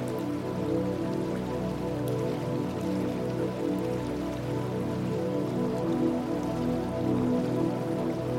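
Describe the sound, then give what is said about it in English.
Rushing water pours down in a steady, unbroken roar, a dense hiss that holds at a constant level throughout, with a low humming drone beneath it and no talking. “And of course, the water crashing down in all its glory.”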